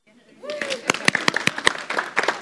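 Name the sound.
audience applause in church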